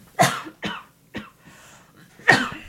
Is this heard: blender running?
no